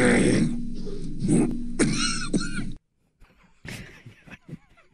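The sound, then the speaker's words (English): An audio drop of Mike Leach coughing: several loud, harsh bursts, then after a brief silence a few fainter, rougher coughs and throat-clearing sounds follow. “We also have a Mike Leach cough drop that I sent Swigard now.”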